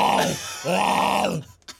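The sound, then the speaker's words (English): A person imitates hippo noises with two loud, drawn-out throaty groans, the second longer and sliding downward in pitch, followed by a brief breathy sound. “What kind of noises do hippos make?”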